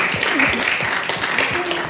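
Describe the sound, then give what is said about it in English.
Steady, dense applause from an audience fills the whole stretch at a fairly loud, even level, with faint voices murmuring underneath. “Let's clap.”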